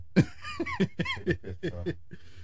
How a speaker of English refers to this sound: But I don't know why I'm coughing.